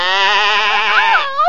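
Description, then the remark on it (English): A goat lets out one loud, drawn-out bleat as it is killed with a knife, its strained cry wavering and rising in pitch before breaking off near the end. No one speaks. “Oh, sister, don't. Don't. There's your precious little goat. She won't bother you anymore.”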